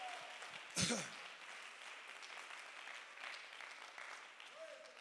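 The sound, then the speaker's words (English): An audience claps their hands during a sermon in a steady, dense patter of applause that runs through the whole clip, with a brief louder burst near the start and a faint voice murmuring beneath. “Somebody clap your hands if that's the way you feel about it.”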